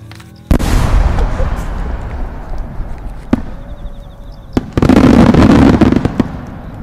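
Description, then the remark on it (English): A firework rocket with a lit fuse launches with a sudden roaring whoosh, followed by a few sharp, loud bangs and then a dense burst of crackling explosions of pink sparks that slowly fades. “The boy, we call the fire starter, hands me a rocket, fuse lit.”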